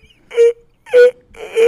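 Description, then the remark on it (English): A big, voiced yawn comes out as three loud moaning bursts, each a short whining tone with a breathy rasp, separated by brief silences and rising again at the end. No one talks. “Big yawn. That was a big yawn.”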